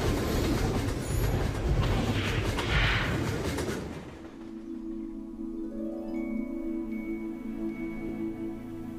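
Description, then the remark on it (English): The Polar Express train, bound for the North Pole, rumbles loudly along the rails with a dense, clattering roar for about four seconds, then settles into a steady, humming drone with a faint high whine over it. “To the North Pole, of course. This is the Polar Express. All aboard!”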